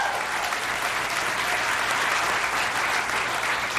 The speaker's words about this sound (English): I just gave him this stuff right before I went up here, and he's doing a great job. I think a great job. Round of applause.